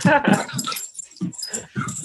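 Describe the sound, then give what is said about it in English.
An excited dog sniffs in quick, breathy bursts and lets out high, whiny whimpers, the short noisy snuffles and thin cries alternating in an uneven, eager rhythm, as it smells as many places as possible in its new home. “He's trying to get a smell as many places as possible so that everyone knows this is his house now.”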